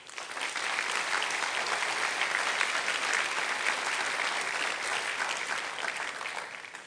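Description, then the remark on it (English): A crowd applauds steadily for about seven seconds, a dense wash of many hands clapping at an even, sustained loudness with no voices standing out, applauding the pastors and their wives. “Now, I was going to ask you to stand and applause, but you've already applauded, so you can stand and applause and do it again.”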